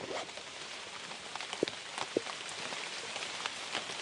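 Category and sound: nature, rain falling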